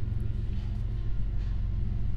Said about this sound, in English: What is that? Oh yeah. Hey, we got a train. There we go.